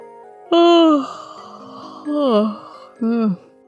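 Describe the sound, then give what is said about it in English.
A narrator performs a story character's drawn-out yawn, three loud voiced bursts with sliding, falling pitch, over a soft, steady musical background. “But Lambden interrupted his own thoughts with a yawn.”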